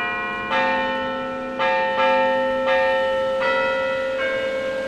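church bells ringing

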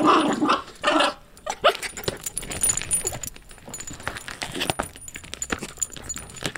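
dog growling

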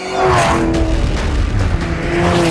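car engine racing

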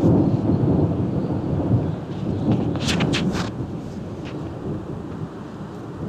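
thunder

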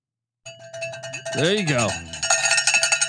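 cowbell ringing

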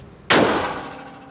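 gunshot

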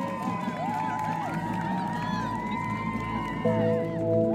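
crowd applause and cheering

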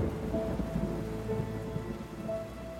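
rain falling with thunder

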